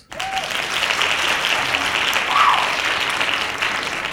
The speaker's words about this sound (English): Hand claps.